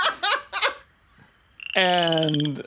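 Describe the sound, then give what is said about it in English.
A man on all fours imitates a croaking, retching noise like a cat with a hairball: two short guttural bursts, a brief pause, then a long, strained, harmonic croak held loudly. “And he's, like, sitting there, and he's kind of, like, on all fours, kind of like a cat, like, that's got a hairball.”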